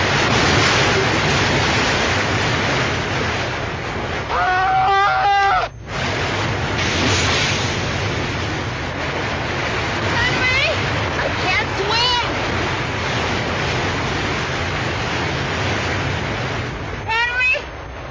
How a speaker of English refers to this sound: Listen! Henry, it sounds like a waterfall!